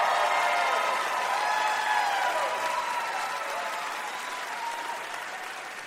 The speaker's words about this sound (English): You get a little cheer just for saying Lady Vols. Woo! Woo!